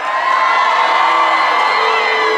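A loud live crowd cheers and whoops continuously, a dense wall of shouting voices sustained at steady volume with no pauses throughout.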